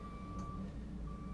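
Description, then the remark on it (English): A truck's reversing beeper sounds, a steady high tone that pauses briefly before resuming, over the low rumble of an idling engine as trucks with loud beepers start up. “if you hear trucks starting up, there are actually trucks starting up with loud beepers on”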